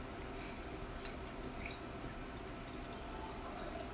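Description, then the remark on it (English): Beer pours steadily into a glass, a soft continuous liquid rush with faint fizzing and a few small splashes, quiet, with no one talking. “So right now he's pouring right now.”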